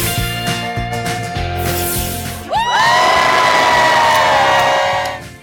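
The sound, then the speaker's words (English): A loud studio audience on the Today show in New York City cheers and whoops over bright, driving music on Friday, September 22, 2023, the noise swelling into a sustained roar about halfway through before easing slightly at the end. “The crowd is ready.”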